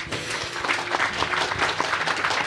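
Many people applauding steadily, a dense wash of many hands clapping at once, fairly loud and sustained without pause.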